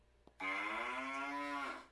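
A single long, loud cow moo, holding a steady, slightly rising drawl for over a second before cutting off, preceded by a faint click.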